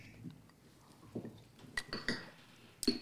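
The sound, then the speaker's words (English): Glasses of Chan Casca clink together in a toast, a few sharp ringing taps spaced out over a couple of seconds, quiet, over soft background rustling. “And so we're going to go ahead and clank to Chan Casca. Hey, cheers. Cheers.”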